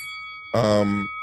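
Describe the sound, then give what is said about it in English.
A single short 'ding' that seems to be voiced by a person imitating a bell. It rings out once over a faint, steady high tone in the background. “And ding the bell for pugilism right here.”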